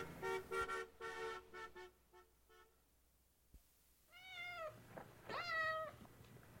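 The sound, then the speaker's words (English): A cat meows twice, fairly loud, the second call longer and stronger, following several seconds of steady, horn-like honking tones at the start. “A cat meowing?”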